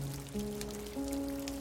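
Soft, steady rainfall patters continuously throughout, quiet and diffuse, with sustained low musical tones humming underneath and shifting pitch a couple of times.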